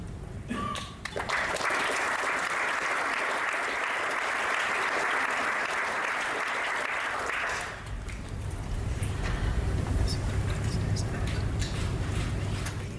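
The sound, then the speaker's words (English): An audience claps steadily after a speech in a dense, crackling wash of applause that lasts several seconds, then gives way to a lower, rumbling crowd murmur. “Get another round of applause for the last speech.”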